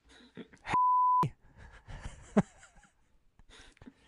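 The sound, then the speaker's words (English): A single loud censor bleep, a flat steady tone lasting about half a second, cuts in between short bursts of voice and breathy sounds. “I hope you got the sensor beep ready.”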